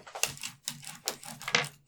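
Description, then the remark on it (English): Black and white dice being handled and passed between hands during a game, making a handful of sharp clicks and small clattering rattles in irregular bursts, with no voices. “I need the black dice. Okay, so you got a plus.”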